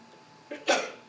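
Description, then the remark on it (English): A single sneeze during a church sermon at Cana Community Church: a short sharp inhale followed by a louder, breathy explosive burst that trails off, with no talking. “Bless you.”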